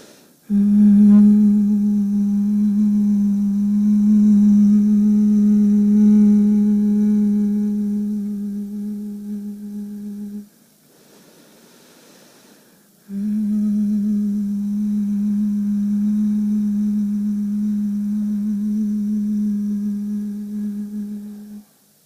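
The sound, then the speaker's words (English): A person hums one steady low note for about ten seconds, pauses briefly to inhale, then hums another long, even note. The hum is fairly loud, with no talking. “Let your next inhale lead to your final hum.”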